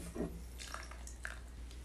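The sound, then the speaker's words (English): Beer being poured into a glass, a soft splashing stream broken by a few short gurgling glugs, quiet with no one talking. “So let's open it up and pour and kind of take a look at it and give it a try.”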